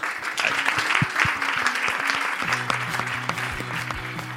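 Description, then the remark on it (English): A crowd applauds steadily for two panelists, a dense wash of many hands clapping at even loudness, while soft, sustained Oscars-like music comes in underneath partway through, introducing the Golden Tajanis special awards of 2018. “I want to now ask you all to offer a round of applause to our two panelists.”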